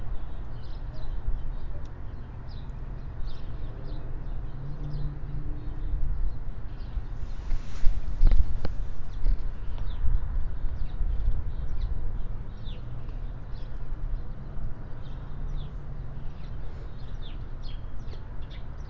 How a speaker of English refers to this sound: The neighbor's birds aren't as loud today. It's more so the surrounding birds that are loud today.